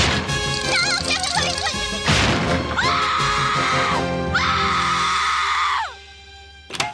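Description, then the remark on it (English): A cartoon girl lets out two long, shrill, loud screams back to back as she runs away, right after a sudden crash over busy cartoon music; the second scream trails off into quiet. “she runs screaming, and this is some fantastic … screaming”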